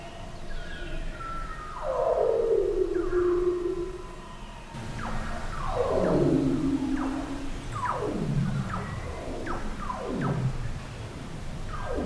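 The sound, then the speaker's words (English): A series of seal whistles recorded underwater in Antarctica in winter, each a long gliding downward sweep, repeating about six times and overlapping, with an eerie echoing tone over a low background hum. “But in the docks of the winter in Antarctica, they've worked out that they can use high-pitched whistles and similarly work out where things are.”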